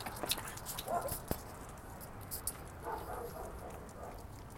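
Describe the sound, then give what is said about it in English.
A big dog barks in short, scattered bursts in Central Los Angeles, over a steady background of outdoor city noise with occasional sharp clicks. “You got big dogs barking.”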